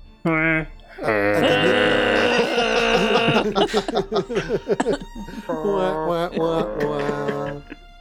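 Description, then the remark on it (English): A voice imitates a wheezy, donkey-like accordion with loud, nasal, braying notes that wheeze in and out, then sputter into choppy bursts before two final drawn-out honks, alone. “The old donkey accordion.”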